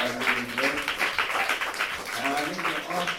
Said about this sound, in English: and of course, one more round of applause for …, ladies and gentlemen.